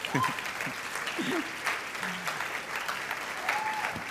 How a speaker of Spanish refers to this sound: Se supone que si te emocionas mucho debes dar un aplauso, se supone por lo menos.